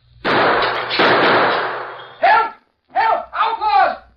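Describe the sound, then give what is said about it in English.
A sudden loud gunshot shoots out a store window, setting off a harsh, crashing shower of breaking window glass that rattles on for nearly two seconds, followed by a man speaking. “Shot the glass out of the window.”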